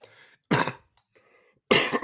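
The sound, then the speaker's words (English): Two sharp, loud coughs, spaced about a second apart, with a quiet breathy, throaty sound in between. “Goodness, I brought cough drops today, everybody, so I think we should be good. Just that one stuck up on me a little bit.”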